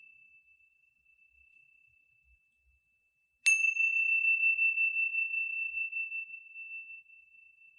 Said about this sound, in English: Wiggling your fingers, wiggling your toes, when you hear the sounds of the chime, listening all the way through.